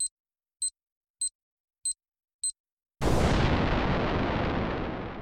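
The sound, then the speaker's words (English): A ticking time bomb hanging on a hotel room door handle gives five sharp, evenly spaced electronic beeps or ticks, about half a second apart, then explodes in a sudden loud blast that roars across the whole range and slowly fades. “Someone has left a ticking time bomb hanging on the door handle.”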